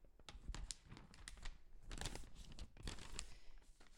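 A sheet of paper being handled and turned over, with irregular crisp rustles and crinkles, fairly quiet, no one speaking.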